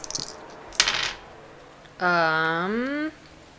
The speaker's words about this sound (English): Will you roll for me? Because I don't have dice in front of me. Will you roll 2d6 plus 3?